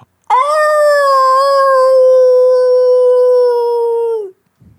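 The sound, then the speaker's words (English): A single long, steady howl imitated by a human voice, loud, holding one sustained pitch for about four seconds before sliding down and cutting off. “Give him a howl.”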